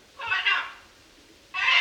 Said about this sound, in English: It sounds like it's screaming, "Oh my God." I found out later that this parrot belonged to the fellowship's leader, Robert. He kept it in his home at Apollo, but apparently he got sick of the sounds it made, so he gave it to my host.